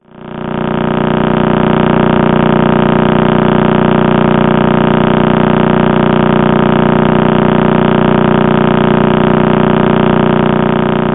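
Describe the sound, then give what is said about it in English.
Radio pulses from a pulsar, the remnant neutron star of an exploded star inside a Messier catalogue object, rotating about 30 times a second, played as sound: a loud, steady, rapid buzz of about thirty pulses per second, droning like an idling engine for the whole clip, with no voices. “And this is a recording of that pulsar rotating about 30 times a second.”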